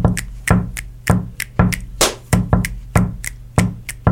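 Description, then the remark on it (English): A steady, looping rhythm built from body sounds, with low thumps on the beat and sharp, bright hand claps cutting through, repeating evenly for several bars with no one talking. “Let's just make that a hand clap for this little body sounds groove that I'm making.”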